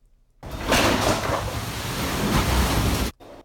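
Floodwater from Hurricane Ian roars and rushes loudly and steadily through an apartment building in Naples, Florida, after breaking down a door, for about three seconds, a dense, churning torrent that starts abruptly and cuts off just as suddenly, with no voices.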